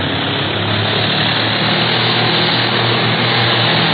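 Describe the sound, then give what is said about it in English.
A propeller airplane engine roars steadily and loudly as the plane turns over and heads straight at the propeller of a pursuit plane, a dense, continuous droning with a low throbbing hum that holds constant throughout, with no voices. “Turn her over and let's head right back in the prop of that pursuit plane.”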